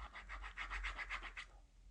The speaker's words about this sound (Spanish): Sí, y ahora tengo, estoy usando hoy un lápiz azul y lo voy a cruzar.